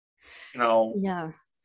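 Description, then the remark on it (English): One big yawn: a breathy intake swells into a drawn-out voiced groan that falls in pitch and fades after about a second, with no other sounds around it. “Oh, sorry, that was a big yawn.”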